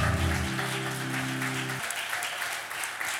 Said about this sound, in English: Hallelujah. Let's give the Lord a big hand clap of praise tonight.